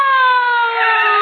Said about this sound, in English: Mamma Mia, there's a siren. Must be fire or something.